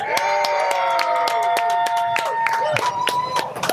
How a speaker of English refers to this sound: And hey, there's like a lot of you here and it didn't sound like it. We're on a speaker. Can everybody cheer that they're here? Welcome to the Bloominati podcast.